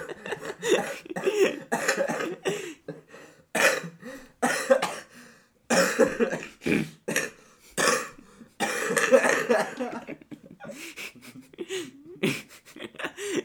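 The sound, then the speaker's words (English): A person coughs and sputters hard as if choking on water, with irregular bursts of harsh, wet coughs and strained gasps between them, continuing loudly throughout. “Spit that water out, little boy. Spit it out.”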